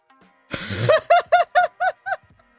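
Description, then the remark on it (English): A man lets out a single loud, breathy sneeze into crab, followed immediately by five short, evenly spaced voiced bursts that sound like laughter. There is no speech. “But he sneezed in the crab, like, right where he's supposed to.”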